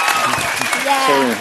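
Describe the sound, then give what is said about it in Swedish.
An audience claps steadily and loudly in a dense, continuous burst of applause, with voices shouting and cheering over it throughout, clapping to vote for a contestant in a cap and pink shirt to win. “Alla som tycker att killen i keps och rosa skjorta borde vinna, klappa nu!”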